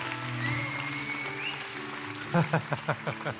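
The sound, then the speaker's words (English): A church audience gives the Lord a hand clap of praise across all campuses, a steady wash of clapping over sustained musical tones, then the clapping turns into a few distinct, rhythmic hand claps near the end. “Come on, give the Lord a hand clap of praise at all of our campuses.”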